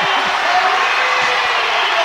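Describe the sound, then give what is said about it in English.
A basketball crowd roars in cheering after a player rolls in a shot, with the North Oldham student section mobbing the court, a loud, steady wash of voices and shouts that holds at full level for the whole stretch without letting up. “And now he rolls it up and in, and you hear the crowd.”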